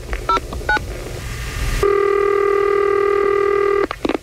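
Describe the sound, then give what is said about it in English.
Touch-tone dialing of a phone call to a man who rented a vehicle and damaged it: two short electronic keypad beeps, followed by a long, steady buzzy tone lasting about two seconds, then a few brief clicks. No one speaks. “I'm going to call this guy, rented a vehicle, damaged it, and put a rim on himself.”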